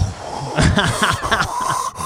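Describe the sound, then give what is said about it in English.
A voice imitates rapid, sharp gasping breaths, a quick series of harsh in-and-out huffs, imitating a person breathing in the shower after turning the knob to cold water. “Like breathing so crazy. I'm like, I guess he just turned the knob to cold.”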